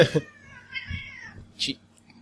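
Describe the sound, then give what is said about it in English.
A cat lets out a drawn-out, wavering meow that sounds displeased, followed by a brief rustle and quiet background noise. “The cat does not like that.”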